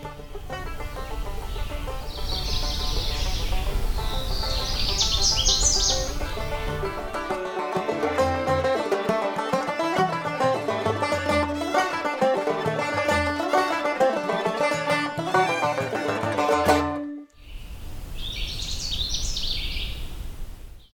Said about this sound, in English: We'll come back to this Canada warbler in a future episode